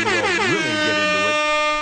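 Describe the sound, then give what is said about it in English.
A loud, blaring air horn, the quick six show horn of a live show at the Stage Bar, Grey Eagle Resort and Casino, Calgary, sounds for about two seconds, its dense stack of harmonics wavering and sliding in pitch before settling into a steady, sustained blast. No voices accompany it. “Let's hit the quick six show horn, please, Director Jordan.”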